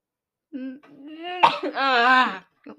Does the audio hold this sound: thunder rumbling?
no